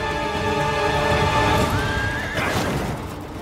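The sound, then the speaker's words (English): A horse in a video game neighs loudly, a long shrill whinny that rises and wavers before breaking off, with light hoof clopping underneath and no talking. “he's getting a horse”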